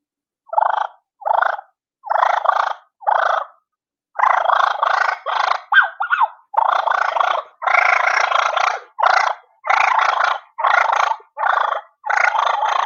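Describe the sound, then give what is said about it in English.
Someone imitates turkeys fighting with a run of raspy, rolling purrs: short choppy bursts at first, then longer, denser growling rattles in a steady rhythm, loud and with no talking. “But so I'll get some fine purrs for you. And I'll do a little sequence like I would do my wings.”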